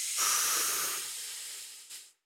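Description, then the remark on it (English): A slow, deep breath drawn in as part of a box breathing exercise, a steady airy hiss lasting about two seconds that gradually eases off, with a brief final catch of air at the end. No talking. “Yeah, so box breathing is 5 seconds in. We can do it together real quick.”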